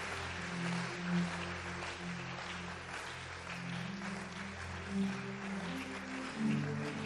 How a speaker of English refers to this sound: Come on, clap like we are becoming mega.